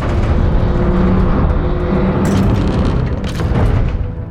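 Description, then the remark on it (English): A heavy truck engine rumbles loudly and steadily, a deep, continuous growl with a couple of harsher bursts as the truck turns and begins to backtrack in darkness. “The machine turns and begins to backtrack.”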